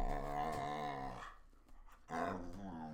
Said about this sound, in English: Well, you guys hear this dog, right? I mean, what do you want?